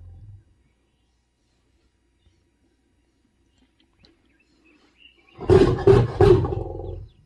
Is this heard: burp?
no